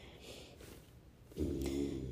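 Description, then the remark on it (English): A pet named Buddy snores softly: after a second of near silence comes a single low, rattling snore lasting under a second, with no talking. “Oh my gosh, if you can hear Buddy snoring, that's so cute.”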